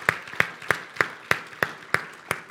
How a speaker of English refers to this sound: Now that deserves applause right there. Come on now. That's exciting.